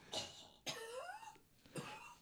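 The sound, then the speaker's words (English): Three harsh coughs in a row with short pauses between them, the middle one longer and rasping with a voiced, throaty edge. No one speaks. “I don't edit anything. Just coughs once in a while.”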